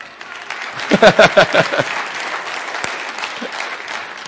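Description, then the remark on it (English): A burst of audience applause, loudest in the first two seconds with a few sharp claps standing out, then thinning into a softer, scattered patter that lingers to the end. “Yeah, thank you for applauding for that.”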